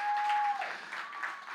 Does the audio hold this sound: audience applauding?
yes